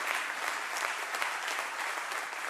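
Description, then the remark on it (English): An audience claps their hands steadily in praise to the Lord, many hands blending into a dense, continuous wash of applause that holds an even, fairly loud level throughout with no voices standing out. “Somebody clap your hands to the Lord and give him praise right now.”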